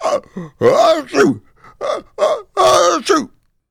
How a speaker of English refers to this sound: As Fred continued to sob and sneeze, an ice fish, whose name was Milo, had felt Fred's tears in the water and heard his crying.